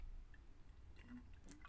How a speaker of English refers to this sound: I'm going to have a sip of water here.